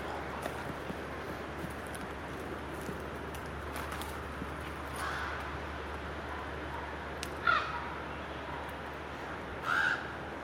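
Crows give a few odd, chattering caws that sound almost like monkeys, over a steady outdoor hum with no one speaking.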